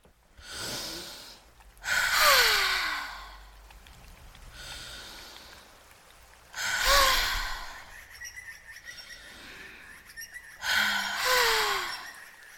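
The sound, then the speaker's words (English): Three slow, deep breaths spaced evenly apart, taken with eyes closed, each a loud, airy inhale followed by a softer, drawn-out exhale, with no talking. “So let's close our eyes and take three breaths together.”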